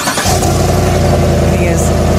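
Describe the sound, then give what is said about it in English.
A car engine is started remotely in a parking lot: it turns over and catches after a brief moment, then settles into a steady, low rumbling idle. “one of his favorite features, and I guess this is a common feature. I just didn't know about it. My car's not new enough to know that. The cranking it before you even get to it”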